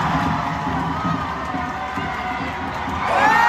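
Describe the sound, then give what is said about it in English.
A large crowd at a march in France cheers and shouts continuously, a dense wash of many voices that swells louder near the end, with a rising whistle-like cry at the close. “Holy shit, they cheer.”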